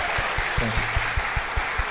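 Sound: applause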